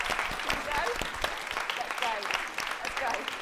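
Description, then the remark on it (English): A crowd claps steadily in dense, continuous applause to close the event, with the theme tune playing faintly and scattered voices running underneath throughout. “Clapping to the theme tune.”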